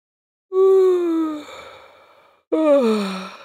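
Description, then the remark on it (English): A voice performs two drawn-out yawns for the story character Peanut as he stretches his little arms above his head after a salsa dancing class, each a loud vocal sound that slides downward in pitch and trails off breathily, separated by a brief pause, with no talking. “He stretched his little arms above his head, let out a big yawn.”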